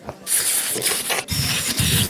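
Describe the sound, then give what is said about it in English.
Loud, airy sucking noises made by a man's mouth as he flails his tongue around, mimicking a vacuum cleaner, in continuous hissing bursts with two brief breaks and no talking. “he opens his mouth as if to kiss her, but instead starts making sucking noises and flailing his tongue around like a human vacuum cleaner.”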